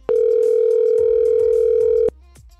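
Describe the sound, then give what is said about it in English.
A single loud telephone ringback tone as the Houston radio station Mix 96.5 calls a listener, one steady two-second electronic hum heard through the line, then it cuts off, leaving faint background noise and no talking. “you need to answer your phone because we're calling you right now.”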